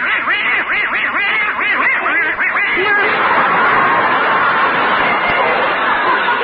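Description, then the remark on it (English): Rapid, loud quacking from Herman, a little duck, downstairs in front of a fireplace at 11 o'clock at night before Christmas. A steady run of nasal squawks grows denser and more jumbled in the second half and continues without pause for the whole stretch. “Herman, their little duck, are still downstairs in front of the fireplace.”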